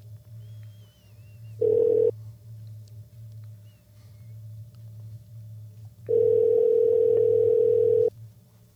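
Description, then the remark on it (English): A telephone line tone while a call is placed to dial in a listener with a question: a steady, mid-pitched tone sounds once briefly, then again for about two seconds, over a constant low hum. No one speaks. “So we're going to dial him in. All right. He's got a question, and we're going to get him on the line.”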